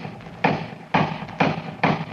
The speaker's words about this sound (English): The sound of the door knocker startled me.